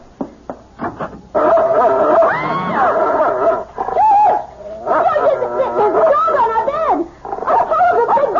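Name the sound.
dog barking and whimpering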